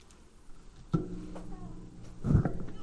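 A female cat lets out a short, strained scream near the end, preceded by a brief knock; otherwise it is quiet, with faint background noise and no talking.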